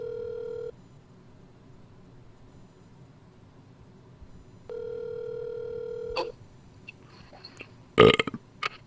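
Phone ringback tone: two steady, mid-pitched electronic rings separated by a long quiet gap, followed by a sudden loud, rough burst of sound near the end.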